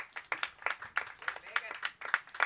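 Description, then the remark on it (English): A round of applause from an audience welcoming a discussion guest, with quick, sharp claps crackling steadily and unevenly for a couple of seconds at a moderate level. “Round of applause.”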